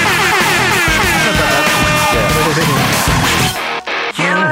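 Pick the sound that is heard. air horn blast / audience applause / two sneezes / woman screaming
air horn blast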